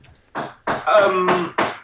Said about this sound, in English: Apologies for the knocking. I have the builders in.